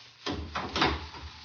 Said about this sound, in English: But a moment tarry, uncle, till the rest of the gentle knights are gone from the great hall. Sir Lionel, would you close, please, the great door when you leave us?